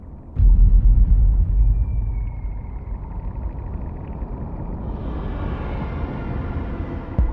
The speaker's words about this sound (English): And then they kind of slowly, over the course of the song, you hear they slowly rise to the surface, psyching up for war. So you'll hear the air cannons, you'll hear them come to the surface.